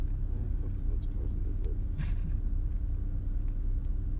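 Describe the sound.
A family sports car engine rumbles steadily at idle, a deep continuous low drone, with faint muffled voices now and then beneath it.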